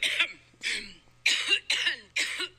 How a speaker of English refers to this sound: But anyhow, looks like she's coughing up a lung.